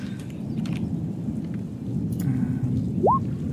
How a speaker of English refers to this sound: It's a lot of thunder going on. Anyone else hear the thunder? Is it raining?